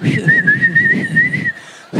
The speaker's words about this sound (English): Okay, well, you keep whistling but not leaving.